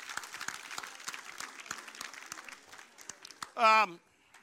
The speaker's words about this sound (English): So let's applaud the Lord. Thank you. God bless you.